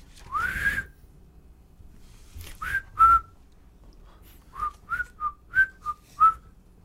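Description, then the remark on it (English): A person whistles a simple tune: a long rising note, a short pause, then a run of brief, bouncy notes at varying pitches, clear against a quiet background. “But Potbelly starts whistling.”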